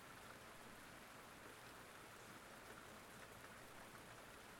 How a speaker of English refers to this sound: I think the rain is easing off now.